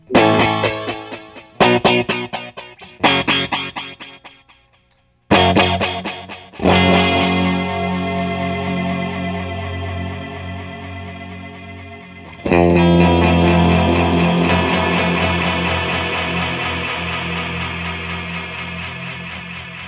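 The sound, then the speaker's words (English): Electric guitar played through a space echo pedal: a few choppy, distorted chord stabs, then long ringing chords that wash out and swell again, loud with no voices. “A little space echo.”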